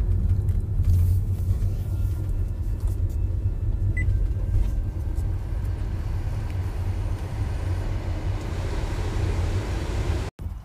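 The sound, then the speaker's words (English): Steady, heavy low rumble of a car on the move, heard from inside, with a constant hiss of road and air noise and no voices, ending in a sudden brief cutout. “I actually am doing it while I'm driving.”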